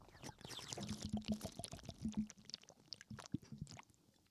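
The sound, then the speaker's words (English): A drink glugs out of a bottle in a quick series of gurgling pulses, fairly loud, with no talking over it. “It really does the glug.”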